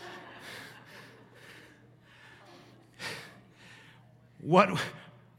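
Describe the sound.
Heavy, labored breathing from a speaker who is out of breath while talking: a run of rough, rhythmic breaths, ending in a louder, voiced gasp for air, with a low steady hum behind.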